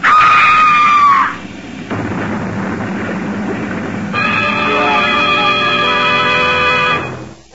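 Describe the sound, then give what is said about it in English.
A train crash sound effect: a shrill, wailing cry gives way to a loud, rough roar of noise, then a sustained high screeching, whistle-like tone rides over the rumble before everything fades out. “A farmer rushes to the crash, finds Olivia thrown clear and still alive.”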